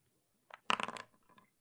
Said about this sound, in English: Let me roll a dice.